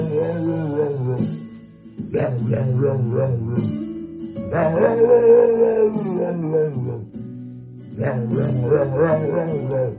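A pit bull sings along to a song, letting out loud, drawn-out wavering howls and yowls in three long phrases, with brief pauses between them.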